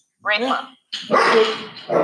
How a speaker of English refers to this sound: Alfie, the office dog is being a prick